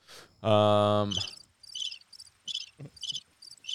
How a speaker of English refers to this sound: Crickets? Actually, I do hear cricket.